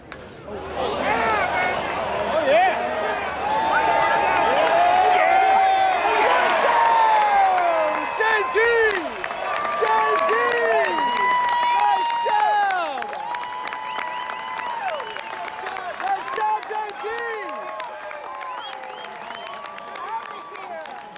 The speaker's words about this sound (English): Listen to the sounds of this baseball game.